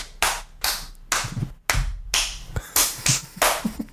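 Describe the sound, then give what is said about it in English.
Someone claps their hands about seven or eight times in a loose, slightly uneven steady beat meant to keep 4/4 time, each clap sharp with a short ringing tail, and nobody speaks. “listening to, like, Andrew clap”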